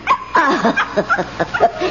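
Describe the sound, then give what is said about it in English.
A small pet dog named Chin Chin barks in a quick run of high, yappy yelps, about seven or eight in two seconds, some bending into whiny, sliding tones, with no one talking. “I left my little dog downstairs. I told him, stay. But he never listens.”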